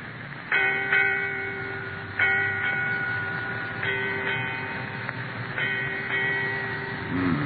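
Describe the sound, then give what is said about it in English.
A ship's bell strikes eight bells: eight strokes in four evenly spaced pairs, each clang ringing on into the next with a sustained metallic hum, with no voices. “Eight bells, Captain.”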